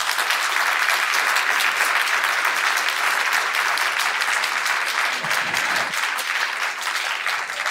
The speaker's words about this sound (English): if you are with the yes side, if you would argue, if you would agree substantially that Citizens United has undermined democracy, can you please give us a round of applause?